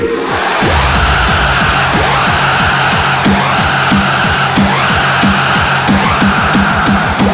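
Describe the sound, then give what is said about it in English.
A large arena crowd screams at full volume, a loud, dense and continuous roar of many voices that holds steady for several seconds without letting up. “I want everyone in this arena to scream at the top of your lungs.”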